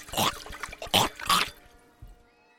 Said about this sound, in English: The water sploshed around, with Furp leaping out of the bowl as it chomped at the air.